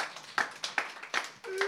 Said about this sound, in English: You should applaud me. Applaud me. Applaud me.